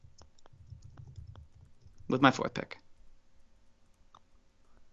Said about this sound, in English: Yeah, I'm typing.